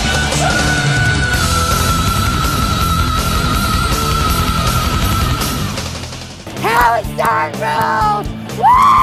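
Dense, loud heavy rock plays with a long sustained high tone, then piercing high-pitched screaming vocals burst in over the band in several rising and falling wails near the end.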